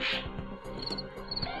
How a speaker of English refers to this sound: I wish I didn't do the crickets so that I could do it now.